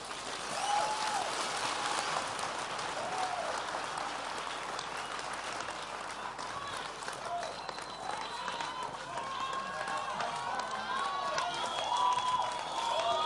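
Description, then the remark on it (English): An audience claps steadily for over ten seconds, a dense, continuous patter of many hands at moderate volume, with scattered voices and faint shouts mixed into the crowd noise. “I knew only six would clap hands.”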